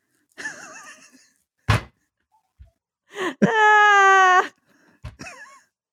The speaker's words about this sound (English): Yawning, and I don't know why. Because this is all this day, this month, and this year has been a lot. That would be why.